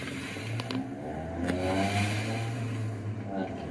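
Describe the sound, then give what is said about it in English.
A car circling around another car: its engine rumbles, revving up and holding a strong, steady drone that swells and eases slightly over a few seconds, with faint background voices. “This one's been circling my car a bunch.”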